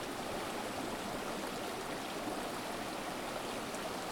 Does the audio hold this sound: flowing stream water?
yes